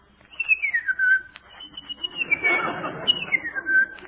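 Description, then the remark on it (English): An impressionist whistles an imitation of birds chirruping on a farm in the morning: three bright, descending warbled phrases in a row, clear, with some breathy rustling noise underneath in the middle. “He bills himself as an impressionist.”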